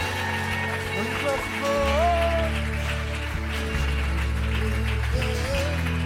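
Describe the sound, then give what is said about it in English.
A church audience applauds to give God a hand clap, in a steady, dense wash of clapping that lasts throughout, layered over sustained keyboard chords with a few gliding melodic notes. “Would you give God a good hand clap for a second?”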